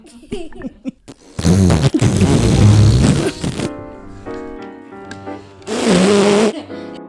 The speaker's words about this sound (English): Oh, without the T, I would get very far away from the one who did that fart.